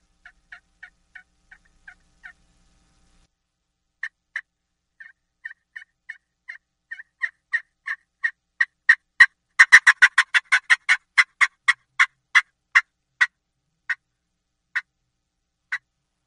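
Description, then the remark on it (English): A turkey fly-down cackle played on a friction call: soft, evenly spaced clucks build into a fast, loud burst of rapid notes, then slow back into a few spaced clucks. No voices, clear. “So, for instance, I'm going to do a fly down cackle on a friction call, just to show you, I'm going to do the same thing I did with the mouth call, but I'm going to do the same rhythm, but I'm going to do this with a friction call.”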